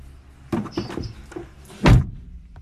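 A door is pulled shut: a few scraping, clicking handling sounds lead into one solid thud near the end, then quiet. No one speaks.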